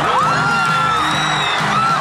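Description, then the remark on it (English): A stadium crowd at a football game cheers in a frenzy after a falling cat is caught in a U.S. flag, a dense, loud roar of whoops, yells and high-pitched shouts rising and falling continuously throughout. “The catch sending the crowd into a frenzy.”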